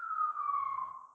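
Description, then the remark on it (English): A steady siren wail holds a single high tone that slowly sinks in pitch as it passes, fairly loud throughout before easing off at the end, with no voices. “I don't know if you heard that siren, but it's hailing the start of Innistrad, and everything has been totally awesome.”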